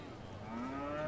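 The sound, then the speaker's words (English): A cow lets out a single short moo, a low, droning call that rises slightly in pitch and swells louder toward the end. “So the bargain was made, and he got the cow and drove it backwards and forwards to show it.”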